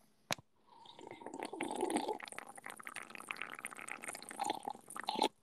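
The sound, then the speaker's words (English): A drink of Diet Coke is slurped in one long, wet, gurgling pull lasting several seconds, swelling near the end, with a sharp click just before it and no talking. “Not a bad slurp.”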